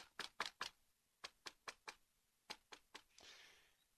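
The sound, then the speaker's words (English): Knocking on a door in quick groups of sharp raps, three, then four, then three, crisp, followed by a soft whooshing hiss as it fades. “You know what that is? Knocking on doors.”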